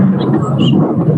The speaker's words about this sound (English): Was that a lightning thunder? Yeah. Oh my gosh, that's amazing.